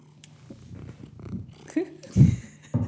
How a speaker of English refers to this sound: Purrs. Probably be able to hear him purring. See, he's a comforting cat. He can sense when he's needed.